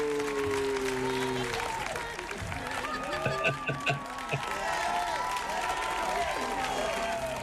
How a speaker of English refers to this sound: Oh, that's great. You deserve every round of that applause.